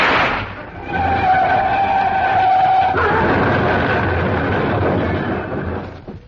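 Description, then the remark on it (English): A car driven by a chauffeur revs up with a rising whine and a brief tire squeal, then a steady loud rumble of rolling wheels as it pulls away along a road, fading slightly at the end. “The car started along the road once again and I took a wild shot.”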